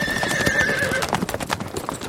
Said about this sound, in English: A runaway carriage! Watch out!